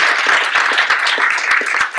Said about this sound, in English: And I think we just give them a round of applause as well.